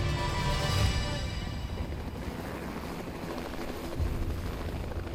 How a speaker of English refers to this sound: A medevac helicopter is dispatched to the area so that Mary Jo can be airlifted to Nassau County Medical Center.